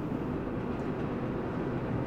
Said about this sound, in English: I'm gonna hold for that train and for dramatic effect.